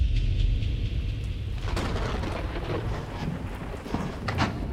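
Steady rain pours down in a continuous hiss, with a deep rumbling undertone like thunder or wind, loud with no one speaking.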